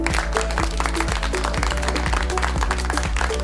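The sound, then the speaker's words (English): Steady, dense hand clapping like a small crowd applauding, for learners at the start of a math lesson, with a rhythmic music beat and sustained tones underneath, at an even loudness throughout. “Kindly clap your hands.”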